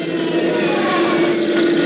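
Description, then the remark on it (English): A 1,500-horsepower piston engine on one wing of a twin-engine aircraft starts up after priming, droning loudly and steadily with a strong, even hum and a rough, buzzing texture that holds without a break for about two seconds. No voices are heard. “Now he's priming the engine. The pilot's hand goes up to the starter switch.”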